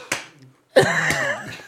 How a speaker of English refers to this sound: I have that loud, Yankee Stadium clap where we cup it, you know, like it's fucking. Yeah, but it's like not in time. It's not in beat with the music. No, I'm not trying to be in time.